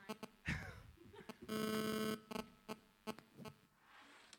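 A phone gives a single sustained buzzy beep lasting under a second, fairly loud, surrounded by scattered clicks and knocks with no one speaking.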